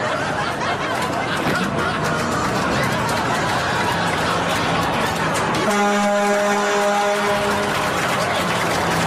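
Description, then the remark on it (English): A truck horn sounds one long, loud, steady blast of about a second and a half, rising out of a busy, noisy background with faint chuckling voices. “Honk, honk goes the truck.”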